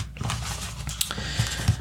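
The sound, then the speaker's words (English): A new deck of cards being shuffled, a steady papery riffling and rustle with quick soft flicks and a few sharper snaps, fairly quiet and with no voices. “I think I need to shuffle.”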